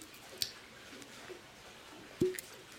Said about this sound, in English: Cork pop, love those.